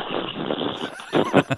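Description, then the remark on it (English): A person imitates the whinny of a horse named DeBrook with a breathy, rising-and-falling vocal neigh, ending in a few louder, choppy bursts. “apparently the horse is okay. Indeed, the horse's name is DeBrook, and he's back. He's got a nose bag on and going...”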